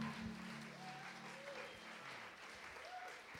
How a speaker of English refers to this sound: Oh, man, can you guys give a round of applause for the worship band, please?